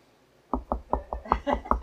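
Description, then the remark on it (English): Seven firm knocks on a door in a quick, steady rhythm, fairly loud, with a hollow low thud to each rap and no voices, demonstrating God knocking at the door to be let in. “Like this. I'm at the door”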